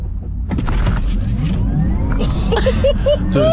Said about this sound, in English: For me though, I think this is the launch control. Is this launch? I think so. you might. You can hear the sound of the car. Listen to the car. Now it's put into Sport Plus. Are you ready?